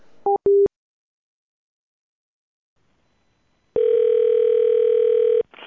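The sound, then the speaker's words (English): A telephone line tone from a telemarketing call requesting a button press: two short beeps, a pause of silence, then a long steady electronic tone lasting nearly two seconds, loud and clear with no talking. “Hey, yeah, on the phone, it had that thing that requested from a telemarketer to hit a button.”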